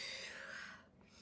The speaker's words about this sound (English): Wow. Okay. Deep breathing.